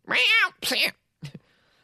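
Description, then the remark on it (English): A person imitates an angry cat with two loud, strained meows in quick succession, followed by a brief hissing spit. “You guys digging my cat noises?”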